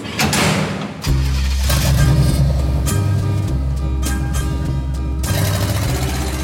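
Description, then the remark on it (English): A loud, steady low engine rumble of a cargo truck starts after a burst of noise, with several sharp metallic clunks and slides as the truck's heavy cargo doors shut on boxes filled with bottles over the running motor. “The cargo truck doors close again.”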